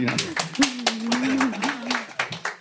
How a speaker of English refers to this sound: I'm not exactly sure what that clapping signifies, but I'm nervous. I made a good point. Right.